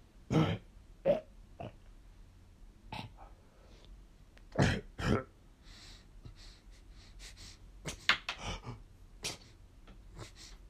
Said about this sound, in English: Slippy was looking over Crow's body. As he wheezed in bed, began to cough up blood.